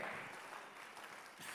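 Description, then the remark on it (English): A crowd claps together in a steady, dense wash of applause that stays loud and even throughout, with no voices standing out. “Will you clap your like God gave you that hand?”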